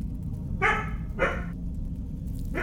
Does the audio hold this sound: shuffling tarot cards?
no